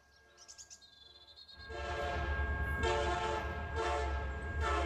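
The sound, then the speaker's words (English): A train horn sounds a few short tonal blasts, then a loud sustained horn blares over the heavy rumble of a passing train, with no talking. “Walt and his sister and Roy, too, sometimes would race down the street when they heard the train whistle in the distance and stand by the train tracks and wave as Uncle Mike Martin came by in his huge locomotive.”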